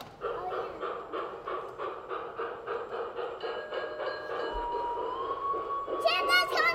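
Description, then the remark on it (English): A G-scale model train, one of two on display in the Botanical Center's Christmas celebration, clatters along in a steady, quick rhythm, with a faint mechanical hum underneath and a brief, bright whistle-like chirp near the end. “2 G-scale model trains are on display, a traditional one around the Christmas tree in the main conservatory, and another encircling a replica of a New England ski”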